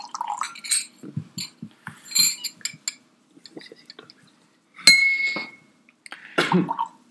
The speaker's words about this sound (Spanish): ¿Por qué no limpiamos los vasos? Para eso les traje la agüita.